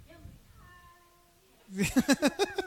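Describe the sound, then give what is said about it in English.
A cat meows, first a faint drawn-out tone, then a loud burst of five or six quick, rhythmic meows in a row. “Yes, the cat's eating”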